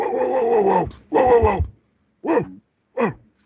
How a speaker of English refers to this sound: Yeah, for those of you who could hear that, that was my dog, Doug. He's upstairs. I'm recording this in the basement.